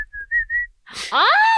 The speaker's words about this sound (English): I was just sitting at my desk one day, my first job, as a receptionist at a travel agency, and really fucking bored, and I just, all of a sudden, I start whistling.